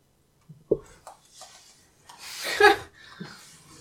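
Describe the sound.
A person imitates the chattering zombie from World War Z: scattered clicky mouth noises and a sharp pop, then a loud raspy, hissing snarl, trailing off into breathy sniffs and soft grunts.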